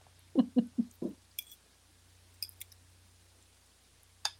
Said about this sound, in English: You can't even hear it. No, actually, no. You can hear the fork every once in a while, which is making me hungry.